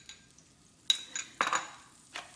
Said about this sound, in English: You're just gonna flash it in there really fast. So I've got the heat, you can hear the sizzling now. I've got the heat really high.